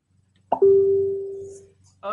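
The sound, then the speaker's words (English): A Facebook notification alert sounds as one steady electronic beep lasting about a second, clear and fairly loud, then a voice starts speaking just after it ends. “You don't have to mute your notifications coming in on Facebook.”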